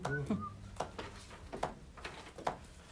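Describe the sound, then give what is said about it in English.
A person briefly whistles a thin, high tone near the start, imitating the wheeze that bronchial constriction makes in the lungs, followed by a few soft, scattered clicks. “your bronchial constriction makes you whistle at a very small level, right? Whistle while you work.”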